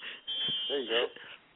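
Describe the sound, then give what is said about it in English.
A fire alarm sounds in a steady high-pitched electronic tone, fairly faint and in the background, while a voice talks over it. “Somebody's fire alarm went off.”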